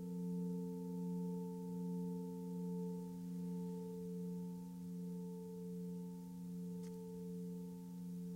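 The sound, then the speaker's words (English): A Tibetan singing bell rings during a mindful awareness meditation in a long, sustained hum, its layered tones holding steady while the sound slowly swells and wavers in gentle pulses. It is soft, with no voices. “Mindful Awareness Meditation with Tibetan Singing Bells”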